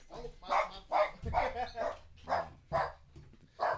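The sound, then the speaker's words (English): A guard dog barks repeatedly in a quick, steady series of sharp yaps, about seven or eight in under four seconds, not very loud. “We got the guard dog on deck.”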